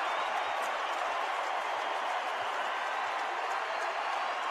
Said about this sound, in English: If you thought the crowd was loud before, listen to it now.